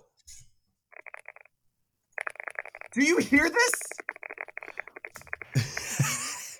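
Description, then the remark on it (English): Rapid, continuous clicking of mechanical keyboard keys, dense and fast like quick typing, with a brief burst first and then a longer run. A voice speaks over the clatter partway through. “I can't hear you because we can only hear the mechanical keyboard.”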